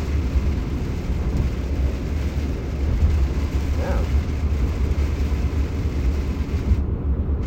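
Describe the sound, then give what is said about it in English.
Heavy rain pours in a steady, dense roar with a deep rumbling undertone, unbroken for several seconds, with a brief faint vocal sound partway through before it cuts off. “this rain so is so this intense.”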